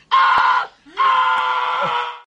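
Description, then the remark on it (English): A man lets out two loud, harsh screams, a short one followed by a longer drawn-out wail, performed as an exaggerated imitation of the trademark scream of a loud 1980s comedian. “He was like, oh, my wife left me. Ah. That's what he did all the time. Scream loud.”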